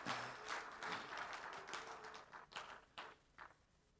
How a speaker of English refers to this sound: Let's praise him for just being available. Clap in your hands, whatever. Thank you, God, for being available.